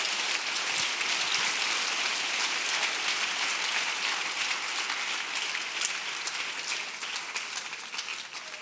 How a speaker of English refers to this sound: I wish someone would clap their hands right now.